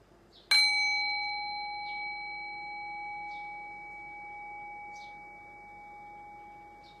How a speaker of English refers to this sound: And as you're resting in the present moment, I'm going to ring the sound of the bell. Rest your thinking mind on the sound of the bell. Allow the decay of the bell to guide your awareness into silence.